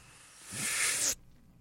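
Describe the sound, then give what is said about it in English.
Coffee stout beer pours into a glass as a rising, foamy hiss for about half a second, then cuts off abruptly, followed by a faint click. No voices. “I am, I've poured mine into a glass. Mm-hmm. And the first pull is really, I've just got a lot of head.”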